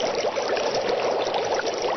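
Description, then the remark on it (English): Continuous liquid bubbling and gurgling from an unaltered science lab sound effect, fairly loud and steady throughout, like a lab flask boiling or water churning, with no voices over it. “This is the real MSNBC sound effects. I have not added anything to bubbling.”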